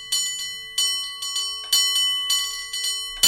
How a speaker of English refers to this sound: Bicycle bell ringing to go with our cable car bell ringing.